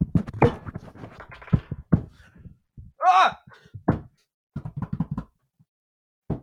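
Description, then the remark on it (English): Loud clattering and thumping as a computer keyboard is banged in irregular bursts, knocking a keycap off, broken midway by a short rising wail from a voice, then more scattered knocks and taps. “I actually knocked a keycap off of my keyboard doing that.”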